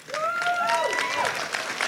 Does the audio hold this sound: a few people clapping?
yes